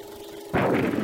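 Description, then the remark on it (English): A low steady hum, then a sudden loud roar of gunfire from the film trailer for The Fighting Phantom, starring Irving Fischel, Gail Patrick and Kent Taylor. The gunfire bursts in halfway through and keeps rumbling in heavy, booming waves. No voices are heard. “Roaring guns and singing slugs scream adventure and action in The Fighting Phantom, starring Irving Fischel, Gail Patrick, Kent Taylor.”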